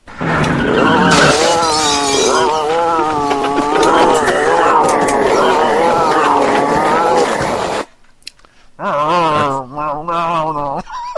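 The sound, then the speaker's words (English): Loud, harsh Sasquatch screeches and roars from a movie, the sound played when he is fighting, with wavering, sliding pitch run for about eight seconds, break off briefly, then start again as the same loop used throughout the movie. “Now, here's the one where that they tend to play when he's fighting.”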